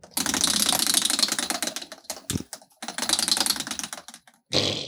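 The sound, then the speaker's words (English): A wheel spins with a dense, rapid stream of ratcheting clicks that breaks off briefly midway, resumes, then ends in a short final burst. No one speaks. “Spin it up”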